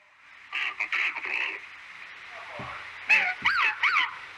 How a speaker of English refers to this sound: Here's a whistling. It sounded like upset, like frantic almost. So you hear people whistling.